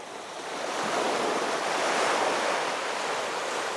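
Ocean waves wash onto a beach with a broad, soft, rhythmic whoosh that swells up over the first second and then holds as a steady roar of surf, with no voices present.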